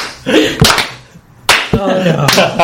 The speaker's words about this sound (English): Should we all do a slow clap for that?